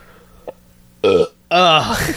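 Two loud burps from a man in quick succession, the first short and the second longer and drawn out with a throaty, rumbling tone, after a brief quiet lead-in.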